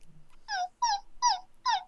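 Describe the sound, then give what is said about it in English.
A dog whimpers four times in a steady rhythm, each high, whiny cry sliding downward in pitch. The cries are fairly clear, with brief quiet gaps between them and no talking. “someone let the dog Are you out. Whimpering.”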